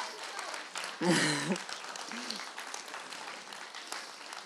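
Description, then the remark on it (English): A church audience claps steadily throughout as people come up to the front, a dense patter of many hands, with a brief voice rising over the applause near the start. “So would you like to come to the front, and would the congregation like to give them a big round of applause as they come up and help me with the next bit of my”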